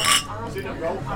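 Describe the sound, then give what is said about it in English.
Beer glasses clink once, bright, in a quick toast at the very start, then voices carry on talking over a low background hum. “Okay, so cheers.”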